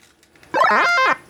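A single drawn-out video game dog bark as the player's character turns into a dog, loud, with a bright, tonal, slightly synthetic quality, rising and then falling in pitch over about half a second with nothing else around it.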